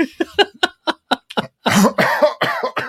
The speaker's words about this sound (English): Ooh, he's coughing. He's coughing.